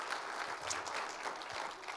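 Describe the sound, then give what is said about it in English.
A church audience applauds the announcement of a youth summer camp at Washington Family Ranch, dense, steady clapping that holds at an even level for the full two seconds, with no clear voices or cheers standing out from the patter. “Yeah, go ahead and cheer for that.”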